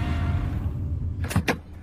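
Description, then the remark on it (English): A car door unlatches and swings open with two quick, sharp clunks as someone jumps out of the car at a hospital, over the low steady rumble of an idling engine. “I jumped out of the car and waved down the first people I saw.”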